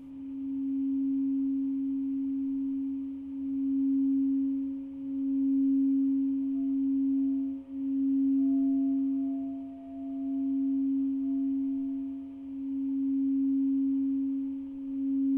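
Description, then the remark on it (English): A steady ringing tone from an object a woman rubs with a wand hums continuously in a wooden dome chamber, fairly loud, its volume swelling and waning in slow, regular pulses. No voices. “A wand mm-hmm. that she would rub against them to create the sound.”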